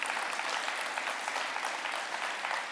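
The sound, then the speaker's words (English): A crowd claps steadily as a video comes on, a dense, even wash of applause that holds at a constant level with no pauses. “Even just the clapping and the shouting when the video comes on, you don't know what that does for me personally and for other people who are a part of this.”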